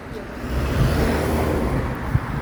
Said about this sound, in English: Cars passing by here.